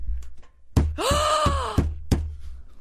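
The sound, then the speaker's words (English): Headphones are banged against something hard: about five dull knocks at an irregular pace, with a brief rising-and-falling whine sounding between them. “And will you stop banging her headphones?”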